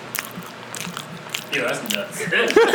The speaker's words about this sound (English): I'm gonna just chew on the mic. ASMR.